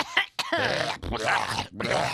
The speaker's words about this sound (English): She's clearing her throat on the air. She's got a button that literally makes it so she doesn't have to clear her throat on the air.